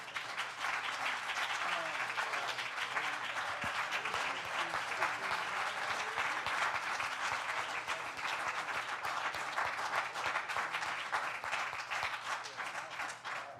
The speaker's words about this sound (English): Lord, a good hand clap.